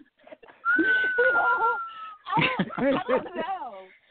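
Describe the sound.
A failed attempt at whistling: a thin, steady whistle-like tone struggles through over voiced humming, then collapses into a series of sliding, breathy vocal noises, moderately loud.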